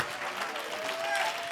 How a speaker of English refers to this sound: How many believes it this morning? Oh, if you believe it, clap your hands and shout to God in this house. Come on, somebody.